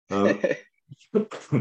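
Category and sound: human body sound, coughing fit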